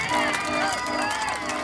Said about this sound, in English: The large metal gates open, and the trucks blare their horns as they inch forward. The crowd bursts into applause, cheering the trucks along.